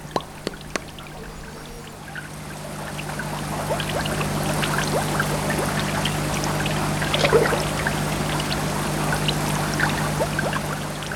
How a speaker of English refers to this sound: I've chosen rippling water, bubbles and splashing, and the hum of a filter and the light buzzing, and the noise of fishes going.